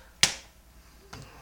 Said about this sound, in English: Let's slap pants for that.